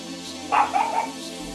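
A dog lets out a quick run of short, high-pitched barks, three or so yappy bursts close together, over a steady low background hum with no talking.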